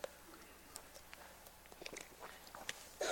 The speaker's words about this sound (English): I just did that thing where I took a sip of water and then I breathed at the wrong time. And there's probably a cough coming somewhere in there, so be prepared for that.